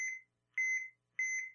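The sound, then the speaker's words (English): Three evenly spaced electronic beeps, each a steady high-pitched tone about a third of a second long, repeating in a regular rhythm like a microwave or appliance alert, with no talking. “Is that a microwave or what?”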